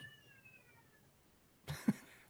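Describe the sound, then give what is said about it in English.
A single faint, drawn-out cat meow sounds in the background, sliding slightly downward in pitch, followed by a short burst of noisy rustling and a couple of dull thumps. “Can you hear that cat in the background?”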